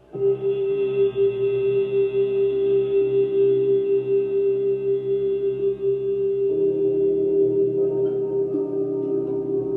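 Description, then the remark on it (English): A person hums one long, steady note on a slow exhale after holding a recovery breath, fairly loud, holding the same pitch for nearly ten seconds with a slight shift in tone near the end. “And exhale with a hum.”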